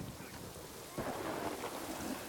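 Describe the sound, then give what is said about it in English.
Steady rain pours down with a dense, hissing wash that grows heavier and louder partway through, over a low rumbling undertone. No one speaks. “But the rain apparently happens really fast.”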